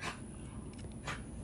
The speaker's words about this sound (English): Sorry, fucking dogs.